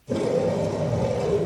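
A deep, angry bear roar sound effect, the 'angry West Hollywood bear' cue used to tell a stand-up performer to wrap up, bursts in and holds steady for over a second, a loud, rough, growling tone with heavy low rumble and no pauses.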